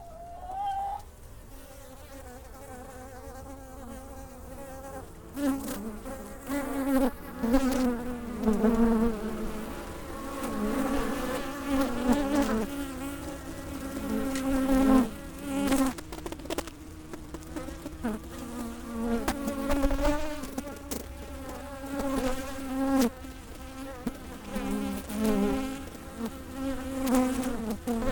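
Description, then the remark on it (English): A queenless honeybee hive gives off a dense, mournful droning hum. It starts quieter and swells after a few seconds into a steady, wavering buzz that fills the whole recording, with no voices. “They make this, like, mourning sound, like elephants do. So I have some audio of that so people can hear, and there really absolutely a difference.”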